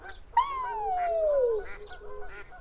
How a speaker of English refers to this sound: Oh, the geese like the lettuce. That's good.